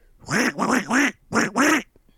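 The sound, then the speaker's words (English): A person imitates a duck with five loud, nasal quacks, three in quick rhythmic succession, a short pause, then two more. “It is your turn to make a duck sound.”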